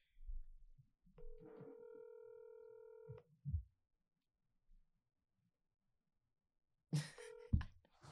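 An outgoing phone call rings through the earpiece: one steady electronic ring tone of about two seconds, a couple of soft clicks, a pause, then a noisy crackle and a short second ring.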